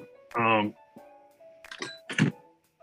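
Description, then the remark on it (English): A door creaks with a short, high squeal, then shuts with two rattling knocks of the latch and frame, followed by quiet. “Let me get this door real quick.”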